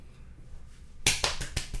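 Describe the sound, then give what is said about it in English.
After a second of quiet room tone, someone claps their hands about five times in a quick, steady rhythm, the sharp claps fairly loud, with no talking. “It's not clapping, that's clapping.”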